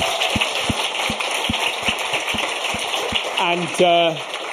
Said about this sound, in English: So this person is doing their first ever open mic gig tomorrow, which is definitely worth a round of applause, I think.